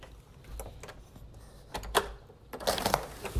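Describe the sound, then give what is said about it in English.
Heavy rain pours down outside in a steady, crackling hiss, broken by irregular louder bursts of splattering and tapping, during a storm with lightning. No one speaks. “It's pouring outside and it sucks. Listen to this shit.”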